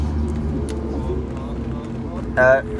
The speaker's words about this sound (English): What's up? We're in the back of the truck.